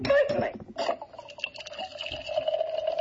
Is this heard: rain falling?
no